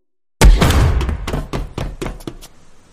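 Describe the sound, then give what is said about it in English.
A heavy outer door is burst open with a loud bang as a group breaches it, followed by a rapid series of thuds and knocks as it swings and rattles, fading over a couple of seconds. “As our heroes burst through the door, we see Santa in the middle of the room, tied up and lying on one of the doll assembly conveyor belts.”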